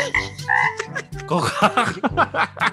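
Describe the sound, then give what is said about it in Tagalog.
Several loud voices imitate frog croaks, calling "Kokak", overlapping in a quick jumble of throaty, repeated calls with no real frogs audible. “ito muli ang BL Frogs na nagsasabing Kokak”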